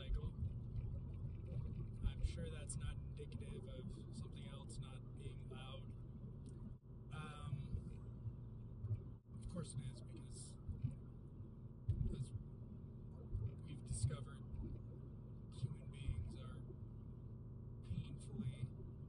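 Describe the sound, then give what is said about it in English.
A loud motorcycle engine rumbles steadily for the whole stretch, its deep growl swelling and dipping, with muffled voices surfacing now and then over the noise. “So anyway, really loud motorcycle.”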